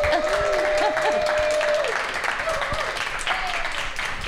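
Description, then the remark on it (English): A live audience at the Selina Hotel claps and cheers continuously to welcome the show Megan's Mega Can, a dense wash of applause with whoops and shouts rising over it, a long sustained whistle near the start and crowd noise throughout. “Please join me by making noise and clapping throughout, but right now in particular, in welcoming Megan's Mega Can.”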